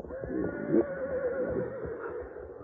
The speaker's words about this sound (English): Meanwhile, the horses, smelling smoke and seeing the wall of flame creeping toward them, began to fuss and fret.